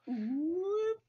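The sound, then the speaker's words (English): A single drawn-out meow, fairly loud, its pitch dipping at first and then rising steadily over about a second before cutting off. No one speaks. “Hey, kitty cat.”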